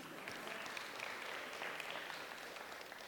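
A crowd applauds steadily, a dense wash of many hands clapping at once, sustained evenly for a few seconds at moderate loudness with no voices standing out.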